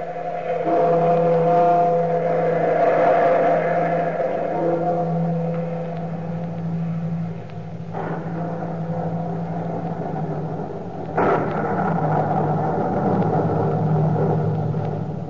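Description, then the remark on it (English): Rolling thunder rumbles low and steady throughout, broken by two sudden sharper cracks partway through that fade back into the deep, continuous roll. No voices are heard. “look to the lightning and the thunder.”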